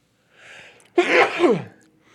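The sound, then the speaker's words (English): A single loud sneeze: a soft breathy intake builds up, then a sharp explosive burst that trails off quickly, with nothing else around it. “Can I get a fucking bless you?”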